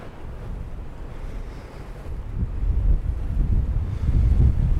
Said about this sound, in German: Windy 5 degrees Celsius. Feels like 1 degree Celsius